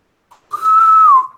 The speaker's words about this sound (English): So we cut to the transporter room. It's a few minutes later and everyone is gathered there. You hear another intercom whistle,